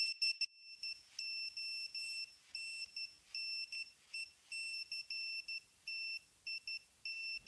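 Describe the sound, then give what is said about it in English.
A Nokia SMS message tone: a steady high-pitched electronic beep keyed on and off in Morse code, a pattern of short and long tones, repeating with no voices. “So the Nokia SMS tone is actually Morse code.”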